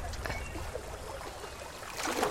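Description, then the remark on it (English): Steady rushing water of a river approaching rapids, a broad continuous wash with gurgling and splashing textures, swelling slightly louder toward the end. “I mean, might be a little bit of rushing water.”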